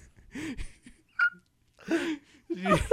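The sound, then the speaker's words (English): A few short, throaty burp-like noises sound up close, separated by brief pauses, with the last one louder and more drawn out. No words are spoken. “You said that he went, burr. I think he farted too.”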